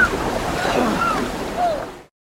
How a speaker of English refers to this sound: had them shout their lines as I shook the canoe up and down to simulate the effects of whitewater rapids